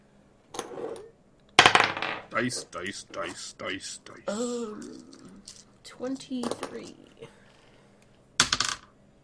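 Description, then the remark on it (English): Dice clatter and tumble across a hard tabletop in several quick bursts of sharp clicks, with faint voices murmuring in between the rolls, as players roll for a nature check. “Everybody make a nature check.”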